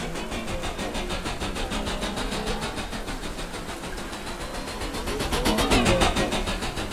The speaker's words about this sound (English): In a futuristic city, Earth, several years ago, Detective Clayton flies over the city in a hover police car.